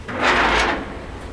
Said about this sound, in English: This is a formidable door. This looks like something you'd see on a submarine. It is.